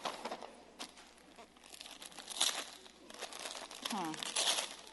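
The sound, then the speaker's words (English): Busy crinkling of Christmas gift paper wrapping being torn open from around a Bible, with sharp crackling bursts and rustles throughout and a brief vocal murmur near the end. “It's nice paper.”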